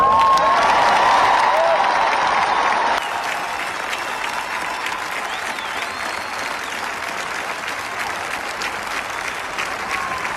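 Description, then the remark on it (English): A large Nebraska crowd at the NCAA tournament game applauds and cheers in a dense, continuous roar of clapping, loudest for the first three seconds with some shouts, then settling into steady, slightly softer applause. “Big Nebraska crowd.”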